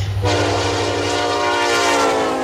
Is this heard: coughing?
no